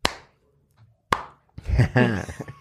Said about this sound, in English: We clapped to sync the video with the audio